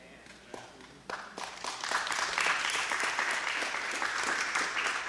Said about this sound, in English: That's the first time I've had an applause talking about sex.